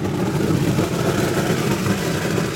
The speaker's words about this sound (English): Then it gets blown through a network of pipes. So if you look up there, he's evacuating the nougat from the blender.